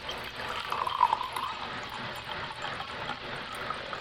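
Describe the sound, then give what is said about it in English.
Cheap red wine is poured steadily into a glass, a continuous splashing and gurgling stream that lasts several seconds with no talking. “And let's give it a dirty pour so you can hear it, hopefully.”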